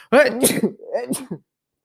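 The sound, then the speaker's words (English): A fairly loud sneeze with a voiced, breathy build-up, followed by a second shorter sneeze burst, both with sharp hissing release and then silence. “I'm gonna sneeze.”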